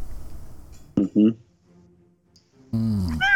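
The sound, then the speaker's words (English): A person imitates a cat's meow, first in two short, clipped bursts and then in a longer, wavering call with a rising pitch, all fairly loud over faint background noise. “Meow! Meow!”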